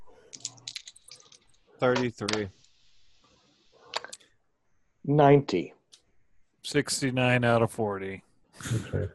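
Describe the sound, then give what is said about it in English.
Quick clattering clicks of dice tumbling on a tabletop for a luck roll, brief, with several voices talking over and between the rolls. “Why don't you guys all do a luck roll?”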